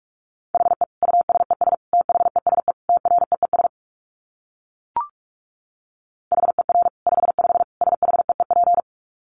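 Rapid Morse code at about 45 words per minute: a steady mid-pitched tone keyed in quick dots and dashes, two bursts separated by a pause with a single short click between them.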